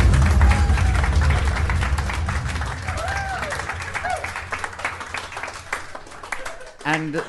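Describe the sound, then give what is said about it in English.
A round of applause: steady, dense clapping from a group, with a few voices calling and cheering over it, tapering slightly before a brief break near the end. “Round of applause!”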